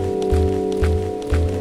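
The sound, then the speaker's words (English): Footsteps squelch across wet, boggy ground in a steady rhythm, roughly two soft, muffled steps per second, over a constant low droning background with no talking. “only when I'm walking. The ground is wet, boggy in places.”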